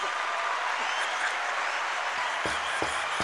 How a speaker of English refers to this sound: he just played like a clapping noise because we have a soundboard here. And he just played a clapping noise for when you said that.